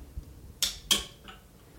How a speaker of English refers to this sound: Oh my god, it's so cool opening a can with one hand.